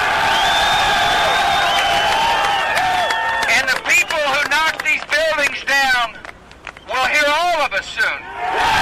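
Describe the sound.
A large crowd yells and cheers loudly, many voices overlapping in wavering shouts that rise and fall in repeated surges, continuous throughout.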